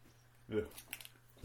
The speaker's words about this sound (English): I apologise to the listening world at home if there are any, because I keep chewing. But I am fucking hungry. That was really nice. I like how you smacked your lips right down the microphone there.